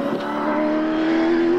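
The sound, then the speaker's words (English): A powerful DJR Team Penske supercar engine revs and accelerates, its steady high-pitched whine climbing slightly in pitch, loud, with no voices over it. “We will put the jandle to the floor to deliver you a better travel experience, eh, cuz?”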